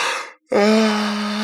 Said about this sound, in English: I had to yawn.